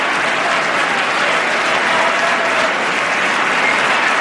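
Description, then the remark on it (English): A large crowd applauds steadily, a dense, continuous wash of clapping that holds at an even, loud level throughout without any voices rising above it. “the applause when he said he had no more campaigns to run.”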